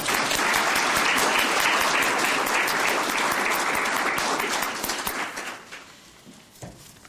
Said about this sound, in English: How about a round of applause for Crystal there?